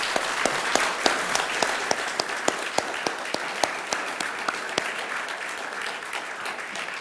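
An audience applauds steadily for about seven seconds, a dense wash of many hands clapping with a few sharper individual claps standing out at a quick, irregular rhythm, holding at a fairly even level.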